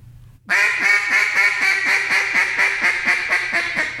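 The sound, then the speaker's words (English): A long, rapid string of loud, raspy quacks from a boss hen duck, about fourteen in a steady even rhythm, alone after a brief quiet start. “And about that time, you hear that old boss hen sound off. And she goes just like this.”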